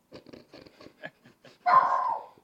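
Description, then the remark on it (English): A small Boston Terrier pants in quick, rhythmic breaths, then lets out one loud, drawn-out bark that trails off into a whine, in a studio. “The Boston Terrier's just gone mad in the Squint studio.”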